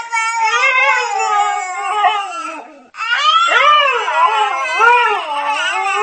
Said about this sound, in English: The top 3 coming up after the husky and the baby go at it imitating each other again.